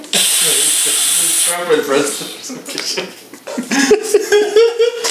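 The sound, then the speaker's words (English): A voice makes a loud, steady hissing spray sound for about a second and a half, imitating a spray-tan nozzle as part of an impression of Trump spray-tanning, then breaks into animated talk. “I'm going to be spraying and tanning my entire life. Look at this.”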